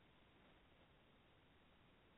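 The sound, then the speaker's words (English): A phone line drops out, leaving only a faint, steady hiss of band-limited static for a couple of seconds with no voice coming through. “We just lost you there for a few moments.”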